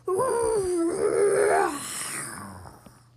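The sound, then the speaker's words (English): A lion roars once, a sustained, wavering, mid-pitched bellow lasting over a second before sliding down into a rough, breathy fade, with no talking. “Then Kion roars.”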